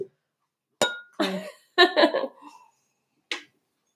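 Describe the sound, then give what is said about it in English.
Glasses clink together in a toast to buying a home, a bright ringing tap followed by a burst of laughter and voices, then a second, shorter clink near the end. “That's what buying a home is all about, honey. Cheers.”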